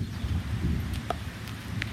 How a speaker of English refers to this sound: I'm going to step inside because it's getting a bit wild and noisy with the thunder.